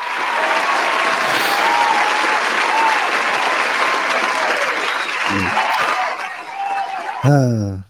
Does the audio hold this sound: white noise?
no